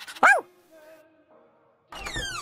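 A puppy lets out one sharp, high-pitched yap, followed by a quiet lull with faint tones, then a louder burst of noisy, sliding sound near the end.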